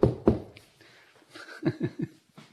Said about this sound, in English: I'm going to knock on wood.